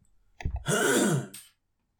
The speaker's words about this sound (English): Oh man, I keep like coughing off screen, sorry.